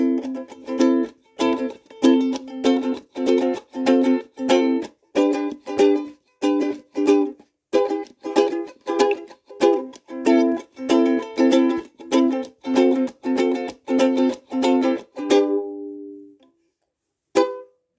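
An instrument plays a catchy tune as a tutorial demonstration, in quick, rhythmic strummed chords for about fifteen seconds, then falls silent before one last brief chord rings out. No one speaks.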